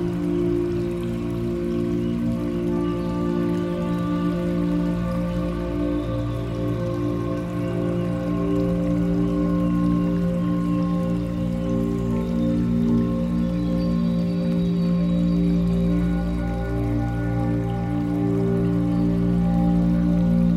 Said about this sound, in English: Hear the sounds of gentle lapping water as you go.